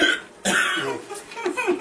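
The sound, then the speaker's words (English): A sudden, sharp hiccup-and-cough burst, followed by strained, throaty breaths and smaller gulping catches over the next second or so, with no clear talking. “Here comes the hiccups.”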